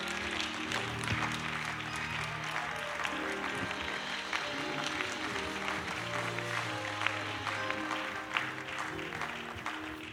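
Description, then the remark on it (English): A church audience claps in sustained, dense applause of praise to God for about ten seconds as people return to their seats, steady and fairly loud, with a warm hum of voices and a faint musical tone underneath. “As you return to your seat, give God one more hand clap of praise.”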